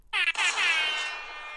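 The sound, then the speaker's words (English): A loud, blaring air horn buzzer sounds on its own during a quiz, a brief stutter followed by a sustained harsh tone that holds for over a second. “I heard the klaxon. Air horn.”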